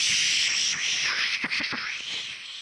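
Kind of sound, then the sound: nature, heavy rain falling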